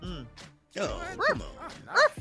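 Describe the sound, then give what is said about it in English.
A dog barks a few times in short, sharp bursts, moderately loud, with brief pauses between barks and a faint voice in the background. “Hey, that dog.”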